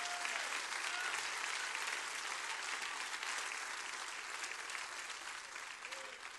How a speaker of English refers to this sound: If you feel that love today, clap your hands with everything you got.